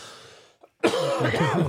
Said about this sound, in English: I'm getting better with that whole mute thing as I cough too.